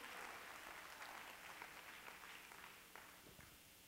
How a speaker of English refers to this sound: Oh, let's clap our hands to the Lord and give God some praise.